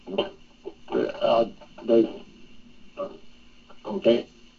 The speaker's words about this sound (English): Okay, you're cutting out. Hang on a second.